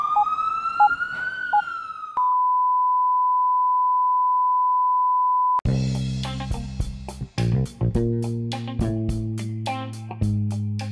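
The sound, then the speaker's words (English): A brief ambulance siren wails for about two seconds, then gives way to a long, steady electronic tone before upbeat music kicks in. No one speaks. “The ambulance is here.”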